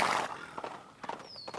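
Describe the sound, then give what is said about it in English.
A horse whinnies briefly over a few sharp hoof clip-clops, fairly loud, with no one speaking. “He's a horse.”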